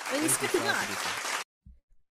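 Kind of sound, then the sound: crowd, hand clapping applause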